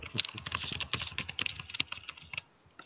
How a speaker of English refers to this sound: Angry typing. Angry typing, indeed.